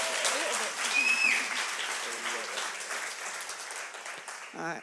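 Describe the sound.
Steady, dense audience applause, given to encourage a nervous speaker before she tells her story, fills the whole stretch, a broad crackle of many hands clapping at a fairly even level, with a few faint voices and a brief whistle mixed in, fading slightly at the end.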